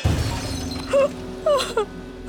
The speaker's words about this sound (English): and he smashed the mirror with his sword.